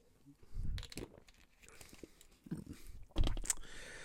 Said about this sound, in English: So let me drink some of this water because my throat is killing me.